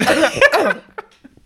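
A loud burst of harsh, hacking coughs, two or three run together in under a second, then fading into quiet with a few faint breathy sounds.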